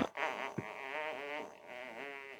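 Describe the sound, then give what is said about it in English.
A cartoonish fart sound effect of the video game character Earl: a long, buzzy, wavering blat lasting a couple of seconds, broken by a brief sputter near the start, with no talking. “Yep, and then Earl farts on occasion. So that was a perfect sound clip that you played.”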